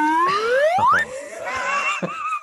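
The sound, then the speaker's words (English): A dab whistle sound effect: one loud, bright whistle that slides steadily upward in pitch for about a second, then breaks into a brief, busy jumble of wavering tones and noise. “Been so long since I heard the dab whistle.”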